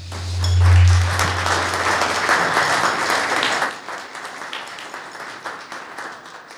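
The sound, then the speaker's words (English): An audience applauds steadily after a presentation, a dense wash of many hands clapping together, loud at first and easing slightly toward the end, with a low hum underneath. “Another round of applause, quick.”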